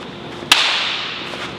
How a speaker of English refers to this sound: That was a pretty uncreative clap that time.